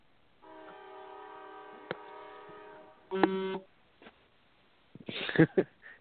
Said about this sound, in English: I think I just heard the train to the Capitol.